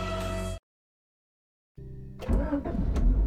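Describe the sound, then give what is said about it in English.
A car engine idles briefly and cuts out. After a short silence it turns over again and revs up louder and rougher as the car pulls out of a parking lot. “I pull out of the parking lot.”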